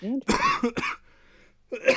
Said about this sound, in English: Sorry. Still trying to get rid of this cough.